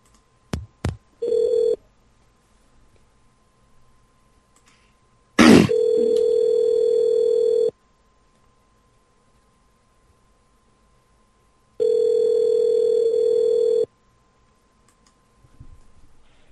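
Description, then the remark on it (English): A couple of sharp clicks and a brief tone, then an outgoing prank phone call to Pink Fitness about pole dancing classes rings back twice, each steady electronic ring lasting about two seconds with a long silent gap between, clear. “It's ringing now, by the way.”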